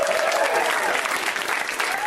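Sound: audience applause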